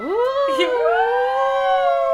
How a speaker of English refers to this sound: Okay, do you guys hear the siren? Oh, God. It's like... It's coming closer. It's making me lose my train of thought. The siren. It's right by the window now. It's right here.